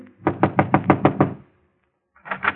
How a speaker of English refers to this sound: He hesitates a moment, glances at the two men beside him, and knocks.